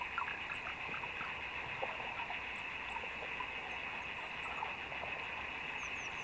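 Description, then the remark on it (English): Underwater beetles tap away in a dense, irregular chorus of tiny clicks and ticks, recorded with a hydrophone under the water, layered over a steady high-pitched hiss, with no voices. “And then if you listened even harder, you could suddenly become aware of a forest of these tapping sounds.”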